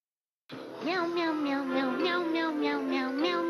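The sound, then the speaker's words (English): A cat meows over and over in a quick, rhythmic, sing-song pattern, loud, the meows running together over a steady held tone for about three seconds, in a Meow Mix brand cat food commercial. “In fact, it's the only cat food that tastes so good, cats ask for it by name.”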